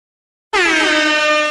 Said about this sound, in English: That was a bit too loud. Sorry, but that was my air horn. I'm a DJ now.